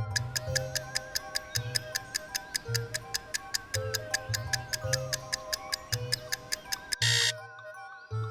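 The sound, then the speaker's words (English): A seven-second countdown clock ticks steadily and quickly, with crisp evenly spaced clicks over low droning musical notes, then stops abruptly as a loud bright burst sounds near the end. “7 seconds, tick-tock.”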